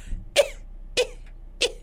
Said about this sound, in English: So she goes in, and of course, the organ is very dusty. There's quite a lot of coughing from DW, which kind of made me think of Zoolander a little bit.